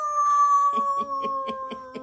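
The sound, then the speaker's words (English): A man's voice imitates the howl of the werewolf he played in the cartoon Teen Wolf: one sustained, wavering note held loud, which breaks up near the end into short rhythmic pulses, like breathy chuckles. “I was a werewolf. How did you howl? Did you howl?”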